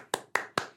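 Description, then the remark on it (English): Three sharp hand claps at a steady, even pace, each a crisp snap with a short fading tail, and no voices. “I do applaud that.”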